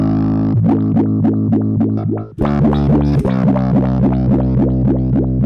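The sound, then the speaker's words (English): A loud, buzzy synth bass plays a steady pulsing pattern through a low-pass filter modulated half by an LFO and half by an envelope, its tone repeatedly opening and closing as the filter sweeps brightness up and down, with a brief drop near the middle before continuing. “The first low-pass filter still on an LFO, or are we on that? I'm on that half LFO, half envelope.”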